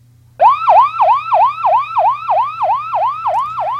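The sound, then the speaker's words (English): A loud ambulance siren cycles in quick, rapid yelps, about three per second, steady throughout, over a low engine rumble with no voices, as the ambulance responds to a code 3 emergency call. “We jump in the ambulance, and away we go.”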